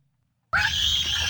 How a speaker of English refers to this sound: That ear-piercing scream is an unruly child on a transatlantic flight to New York. The passengers describe an 8-hour flight from hell with non-stop and nerve-jangling screaming and fussing. They even covered their ears to drown out the 3-year-old.